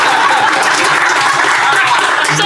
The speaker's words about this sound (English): Thank you. That's never got a round of applause before.